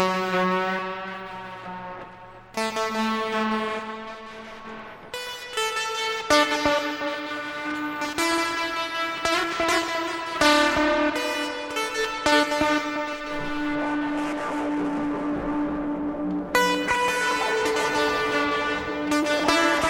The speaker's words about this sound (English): So let me just try some reverb on that guy. I'm just going to put it into the music thing, modular spring reverb.